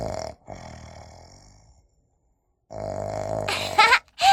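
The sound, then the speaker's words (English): A voice imitates a pig snoring: two long, rough, droning snores separated by a pause, the second ending in sharper snorting snuffles. “Little pig snores in his sleep.”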